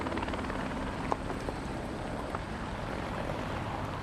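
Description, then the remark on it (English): A helicopter hovers directly overhead at a cycling race, its steady rotor roar filling the air with a dense, continuous rumble and faint thumping, broken by a couple of brief clicks. “The helicopter directly over my head there.”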